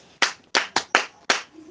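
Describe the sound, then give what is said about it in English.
Five sharp, crisp claps ring out in an uneven rhythm, loud and bright, like a group briefly clapping for themselves, with no voices over them. “Clap for yourself.”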